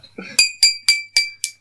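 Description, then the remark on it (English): Five bright glass clinks ring out in quick, fairly even succession, each with a short shimmering tail, as glasses tap together in a toast. A brief murmur precedes the first clink. “Like a glass magically appeared in my hand, and I was able to toast.”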